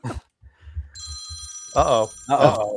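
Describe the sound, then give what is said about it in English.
A telephone rings for an incoming call to a live on-air radio show, with a steady, bright bell-like tone lasting over a second, while voices talk loudly over the end of the ring and soft low thumps sound beforehand. “Are you guys taking calls? We are now.”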